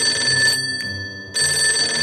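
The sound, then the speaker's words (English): A telephone bell rings in two bursts separated by a short pause, a bright, rapid metallic trill that is fairly loud, with no one speaking; an incoming phone call at a low-end motel in Aspen, Colorado, in 1981. “And the day after my wedding, I woke up and I got a phone call from one of my best friends in L.A.”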